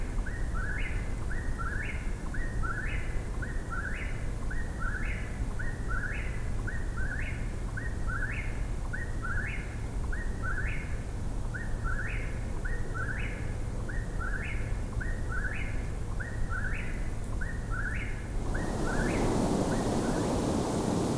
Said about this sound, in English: Eastern whippoorwill.